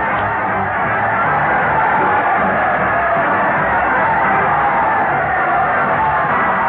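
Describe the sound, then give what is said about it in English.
A large crowd cheers and shouts continuously as Fred Allen leads a band and a parade of stars to the old Town Hall on the radio show Town Hall Tonight, a dense, loud roar of many voices with scattered whoops and yells sustained throughout without pause. “Listen to that proud cheer as Fred Allen leads his parade of stars to the old Town Hall.”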